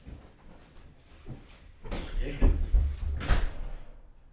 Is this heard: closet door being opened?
yes